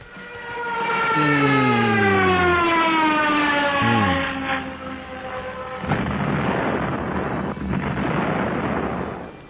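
A stock movie plane crash effect: a loud engine whine dives steadily downward in pitch for several seconds, then a sudden booming impact breaks into a roaring, rumbling wash of noise that continues to the end.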